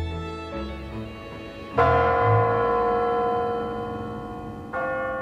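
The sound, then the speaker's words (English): The large bells of the Kremlin tower clock by Red Square strike midnight on New Year's Eve, slowly and loudly, each deep resonant toll ringing out with a long shimmering decay before the next, about three seconds apart, with no voices. “So the president has to finish in time for the clock to strike midnight. From the bells in the Tower of the Kremlin.”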